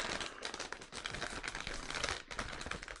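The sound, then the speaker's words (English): A snack bag is opened, its plastic crinkling and rustling loudly and continuously for a few seconds in irregular bursts of crackle, with no voices. “As soon as I open the bag, just very potent.”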